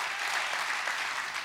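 An audience claps their hands together, a dense, steady wash of many overlapping claps filling the space at a moderate level, with no voices standing out.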